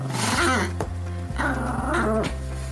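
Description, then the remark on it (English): A 75-pound Doberman and a 6-pound Chihuahua named Pablo growl and snarl in a loud, continuous stretch of rising and falling rumbling vocalizations with brief sharp breaks, and no talking. “It's really something to see a 75-pound Doberman and a 6-pound Chihuahua interact the way they do, and it's clear the whole time that the 6-pound Chihuahua kind of runs the show.”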